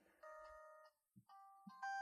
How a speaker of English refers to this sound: It's like hold music? I don't know. I don't know what that is.